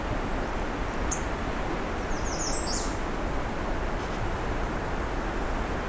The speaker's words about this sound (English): Where are you? Looks like an annoyed Asheville warbler. Oh, there's a male and female.